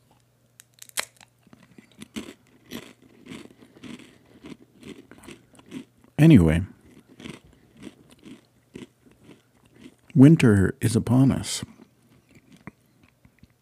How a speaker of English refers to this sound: We'll hear my chips crunch a little better.